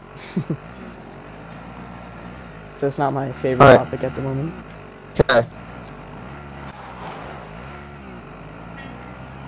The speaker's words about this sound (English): See, this quad is good for getting away really fast. That's one benefit, I'd say.